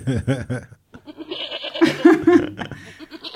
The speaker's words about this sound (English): Oh, can we drop a goat for that? That's what he was saying. Double, back to back.